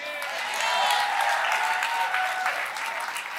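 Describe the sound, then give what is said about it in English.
An audience claps in a loose, unhurried burst, steady and fairly loud for a few seconds, with faint voices mixed into the applause. “It was a very lazy clap, like, take it like you believe it.”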